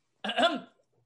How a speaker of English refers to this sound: Oh, he coughed at you.